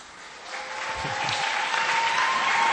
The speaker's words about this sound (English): Clap properly. If you are clapping, clap properly.